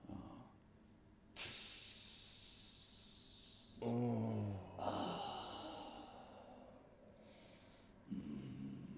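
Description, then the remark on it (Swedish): Water hits hot sauna stones with a loud, bright hiss that slowly fades, followed by a low breathy exhale and a second, softer hissing surge tapering off. “Kan jag hälla på lite mer vatten?”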